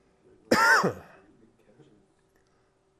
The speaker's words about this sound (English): It's coughing.